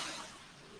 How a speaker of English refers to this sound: Is that wind? Yeah. That's rain and wind.